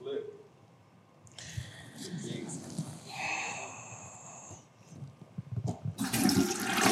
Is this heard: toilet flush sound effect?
yes